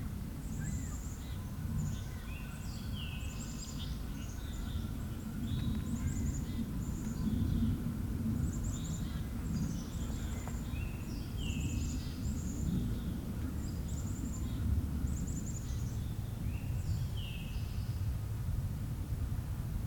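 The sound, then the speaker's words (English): Black-capped chickadees sing high, thin whistled notes, often falling in pairs, repeating steadily throughout over a constant low rumble of background noise. “Some black-capped chickadees singing with their whistles.”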